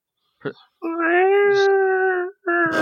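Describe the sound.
A person lets out a drawn-out, nasal whine imitating a whimpering dog, a short yelp followed by a long sustained tone, then a second whine starting right after.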